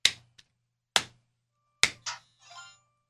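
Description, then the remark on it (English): Three sharp hand claps spaced about a second apart, with a faint softer tap between the first two, followed by brief buzzy, noisy sounds. “All right, so you'll be swinging, and I'll be clapping.”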